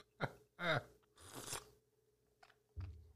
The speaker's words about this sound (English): I'm sorry, I'm over here sipping my tea.